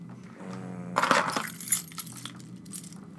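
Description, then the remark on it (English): A bright metallic jangle of keys as they are handed over, a burst of clinking about a second in with a few smaller rattles after, over a low hum. “You got the key? Let me get the key.”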